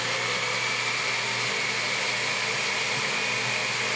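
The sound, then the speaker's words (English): A blender runs on high, blending salami, for the whole stretch, a steady, loud motor whir with a thin whining tone on top and no one speaking. “I hope you have a very powerful blender.”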